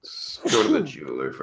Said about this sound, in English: Bless you. Thank you. There was a sneeze when you were talking, so I'm not sure what you said.